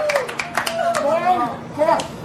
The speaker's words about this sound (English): That high speed drop, and now you can see from the little dot, there's the applause.